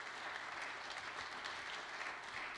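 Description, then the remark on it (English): A church audience claps hands for the Lord in steady, continuous applause, a dense wash of many overlapping claps at an even loudness with no voices standing out. “Well, would you clap your hands for the Lord?”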